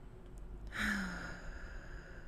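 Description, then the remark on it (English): A single deep breath in through the nose, soft, swelling briefly near the start before fading into quiet background hiss, taken during a guided breathing exercise; no talking. “And I want you to take a big breath in. In through your nose and then out through your mouth.”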